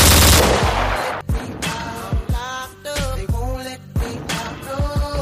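A rapid burst of loud gunshots opens, then single and paired shots crack out irregularly, each with a sharp bang and ringing echo, with no voices.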